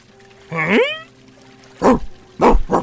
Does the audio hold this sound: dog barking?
yes